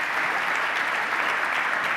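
An audience claps steadily, a dense, even wash of many hands applauding at a constant loud level with no pauses and no voices standing out.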